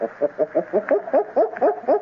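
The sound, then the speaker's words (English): A voice imitates a gorilla's barking with a rapid run of about nine short, hooting barks in a steady rhythm, each with a slightly rising pitch, loud and with no other sound. “We must sound like them. Their barking is like this.”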